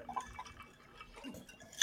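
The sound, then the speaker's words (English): A few quick, bright water drips plink in close succession, ending in a sharper ringing drop, all fairly quiet with no voices. “I'm going to hit him one time with a drip drop.”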